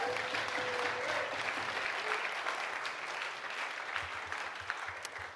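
An audience claps their hands to say thank you to Jesus, in a dense, steady wash of applause that holds at an even loudness for several seconds, with no voices rising above it.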